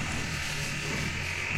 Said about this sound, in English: What is this noise? I think somebody's like mowing their yard. Somebody's like sawing down a tree. Yeah, the mics are picking it up.